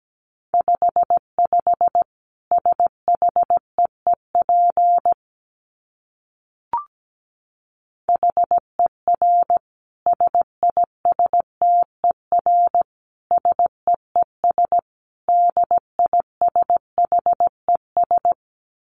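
A steady stream of Morse code at 17 words per minute: a single mid-pitched tone keyed in short dits and longer dahs, grouped into words with a brief pause and a click partway through, no voices.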